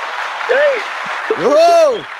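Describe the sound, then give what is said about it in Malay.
Steady applause from an audience for a participant's online answer, with two rising-and-falling vocal whoops or cheers riding over the clapping. “Satu tepukan dan gemuruh untuk Tuan Rahsia atas jawapan online.”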